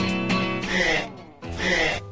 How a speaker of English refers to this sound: Is that your dog? Yeah. Coughing? Yeah. It's not coughing. He's got hypoplastic trachea, so he just doesn't get enough air.